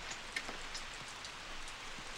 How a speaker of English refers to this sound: Oh, gosh, I hope it stops raining before the wedding.